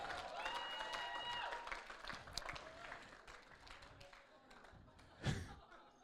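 An audience at Gateway Youth claps steadily as a person is invited to the stage. It is a dense crackle of many hands joined by cheers and a high whistle early on, with one loud burst near the end before it tapers.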